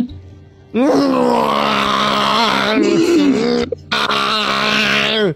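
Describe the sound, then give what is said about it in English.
A voice imitates the scream of a giant badger-mole creature rearing up on its hind legs: two long, loud, strained wailing cries, the first sliding and wavering for about three seconds, then a brief break before a second harsh howl. “It screams at you, and it flails the claw across.”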